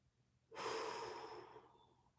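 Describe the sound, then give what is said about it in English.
A single long, deep inhale drawn sharply through the nose, fairly loud, with a hissy airy rush lasting over a second before tapering off. No talking. “Dude, I'm taking nose bong hits of air right now.”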